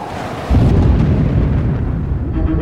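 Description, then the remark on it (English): A deep, heavy rumble of thunder from a thunderstorm raining into the ocean rolls in suddenly and sustains for a couple of seconds, dense low-end booming with a broad roar. No voices. “the empty stretch of sea seemed desolate, despite the cacophony of the thunderstorm that rained into the ocean.”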